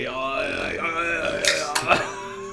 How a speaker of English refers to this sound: I was possessed by a burp demon.